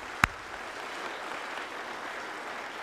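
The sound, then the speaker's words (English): A church audience applauds to welcome a new member, in a steady, even patter of many hands, opening with one sharp louder clap before settling into a continuous wash of clapping. No one speaks. “letting it be known by saying amen, amen, and applause.”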